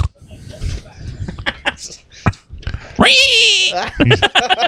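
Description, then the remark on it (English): A person voices a pig-like grunting oink, with a loud, drawn-out squealing burst in the middle, surrounded by shorter breathy snorts and vocal noises. “He died like a pig.”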